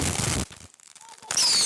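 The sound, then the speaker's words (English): Fireworks explode in loud, crackling bursts, fall briefly quiet, then burst again with a thin whistling streak over the crackle. “With fireworks expected to be a go for most communities, that's positive news for an industry dealing with tighter restrictions.”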